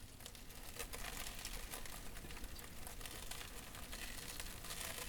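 Faint, continuous crackling and ticking of worms chewing through a block, with dense irregular clicks and no talking.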